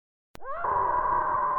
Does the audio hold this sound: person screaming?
yes